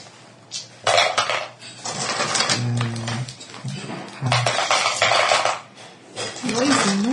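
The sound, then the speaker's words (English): A small tin rattles and clinks around inside a cloth dice bag, with repeated bright metallic clattering bursts that come in uneven shakes. A voice murmurs briefly between the rattles. “It's still got a little tin of a dice bag in it.”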